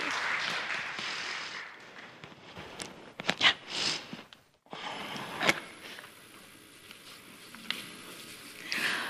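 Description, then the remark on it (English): An audience at a church service applauds a group of people just before a scripture reading and the sermon: a dense wash of many hands clapping at moderate volume that briefly thins out midway before picking back up and continuing steadily to the end. “And that's just like a lovely lead into our sermon, but first we'll give these guys a round of applause and have a scripture.”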